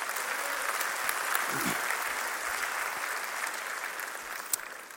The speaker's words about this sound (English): Come on, clap your hands.